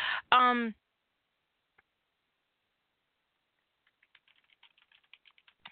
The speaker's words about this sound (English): I've broken my rule about typing on my show. I did that the other night too. The thing is doing this in front of the computer and the keyboards right here and all that stuff, and you know, it's just I can't even help myself.